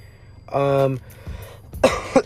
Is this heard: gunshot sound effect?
no